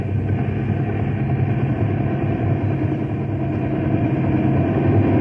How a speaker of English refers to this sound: The wind's sure tossing that copter around.